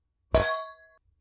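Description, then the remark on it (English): Glasses of Malbec wine clink together once in a toast, a bright sharp tap followed by a clear ringing tone that fades out over about half a second, with no talking. “Okay. Ready to cheers?”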